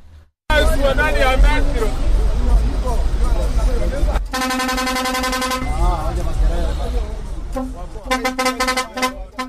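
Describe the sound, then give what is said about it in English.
A noisy, crowded county bus station in Nairobi, Kenya, at rush hour, with travellers heading home to vote in the election: a dense babble of many voices with a long, steady vehicle horn blaring midway and more short honks near the end. “It's rush hour at the county bus station in Nairobi.”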